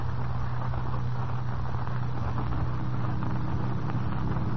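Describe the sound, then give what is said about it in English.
A car engine drones steadily, a constant low hum under a wash of road and wind noise, as the car ascends the dark, winding road up Music Mountain late in the evening, with no voices and no breaks for the whole stretch. “Late the following evening, Kent and Lois Lane in another car ascend the dark and winding road up Music Mountain.”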